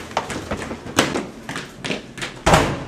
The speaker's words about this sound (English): I can never remember how to open these primitive doors. Ah, yes. The doorknob.